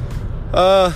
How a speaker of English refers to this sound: Coming at you live from the car.